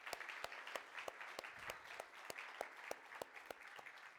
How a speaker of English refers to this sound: Let's give God a round of applause again.